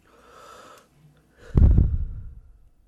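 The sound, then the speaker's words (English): A soft, airy inhale of smoke drawn in for a moment, then after a brief pause a loud, forceful exhale that rushes out and trails off. No talking. “We're back from our smoke break.”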